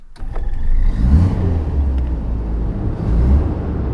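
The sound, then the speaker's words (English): An old car engine cranks to life with a rough, loud start, then revs up and down in a deep, rumbling roar, steady with swelling surges. “Engine's too loud.”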